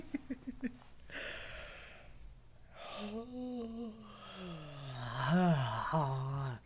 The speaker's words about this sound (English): All right, I gotta yawn. Hold on.